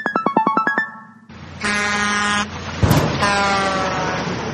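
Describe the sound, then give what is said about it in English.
A rapid string of short chirpy beeps, then a truck horn blares in long, loud, layered blasts over a low engine rumble, on a road by a park. “The little bird just got hit by the truck.”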